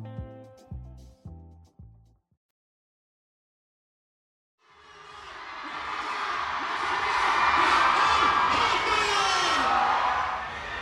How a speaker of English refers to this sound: Right now, I'm standing at the edge of this huge crowd that has gathered around this platform on the convention floor. There are a bunch of stages like this one scattered around the expo. And all these people are waiting for a fourth-generation idol